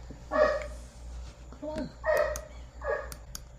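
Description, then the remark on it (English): The owner's pet dogs bark in three or four sharp bursts spaced about a second apart, moderately loud over a low steady hum, with a softer yelp between them. “Sorry about that. My dogs this time.”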